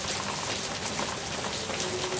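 Heavy rain pours down steadily, a dense hiss of drops spattering and dripping onto hard surfaces from the roof of a house's front landing, with no voices and no letup throughout.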